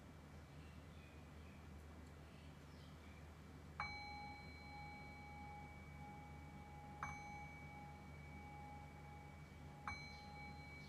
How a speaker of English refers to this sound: And in the next breath or two, I will ring the bell and cue the shift back into our conversational space.